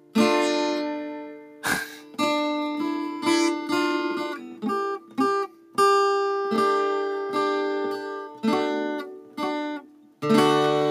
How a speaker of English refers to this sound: It's the sound of a guitar.